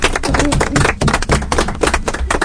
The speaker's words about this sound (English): Do you think you should give yourselves a round of applause?